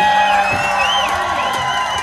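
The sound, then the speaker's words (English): A large crowd roars with sustained cheering and applause for the sound crew, loud and unbroken throughout, with rising and falling whoops and shouts standing out above the dense wash of clapping. “I want to hear a big, big, big round of applause for the sound crew working their arses off all day and all night.”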